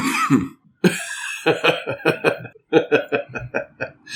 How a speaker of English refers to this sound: was that a cough or was that like a cough? No, it's a cough.